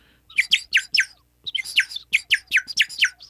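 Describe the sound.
An orange toy whistle, bought at King Richard's Fair, warbles in quick, bright chirps mimicking birdsong, two bursts of rapid trills separated by a short pause, fairly loud with no talking.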